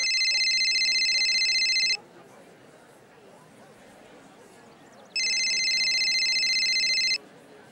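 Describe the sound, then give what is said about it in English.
A phone rings twice, each electronic trill lasting about two seconds with a pause between, loud over a faint, murmuring background, as a man calls his wife on his cell phone. “He says he sees everyone else drenched in a disgusting substance, and he pulls out his cell phone and he calls his wife.”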